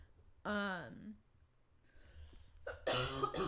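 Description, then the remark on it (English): A harsh cough bursts out near the end, preceded by a short voiced groan or throat sound and a quiet pause in between. “God, I'm really sorry about all the coughing.”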